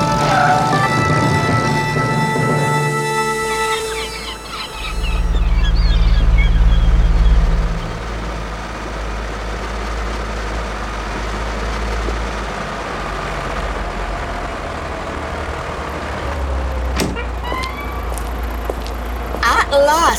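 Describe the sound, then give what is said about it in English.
A car named Bessie is put into reverse and drives backward, a low rumbling drone that swells loudest midway through, with whining tonal sounds at the start and steady background noise throughout. “Into reverse. Here we go again.”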